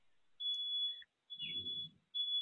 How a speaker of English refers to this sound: So there's a truck backing up somewhere down the street.